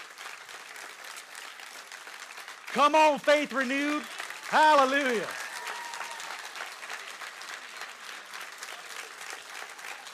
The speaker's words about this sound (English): Come on, I think it's time you ought to clap your hands, all you people. Hallelujah!